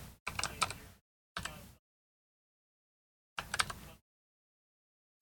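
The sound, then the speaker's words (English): Bursts of rapid, clicky computer keyboard typing as a movie title is typed into a search, in three short runs of about half a second to a second each, separated by stretches of silence. “Oh, fuck, I don't think I'm typing it correctly.”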